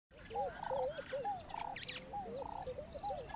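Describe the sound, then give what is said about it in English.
The call of a bird that kills snakes by stomping on them with its long legs: a string of repeated, warbling whistled notes in a quick, uneven rhythm, clear, over a steady high-pitched hum with no talking. “Now we need the call.”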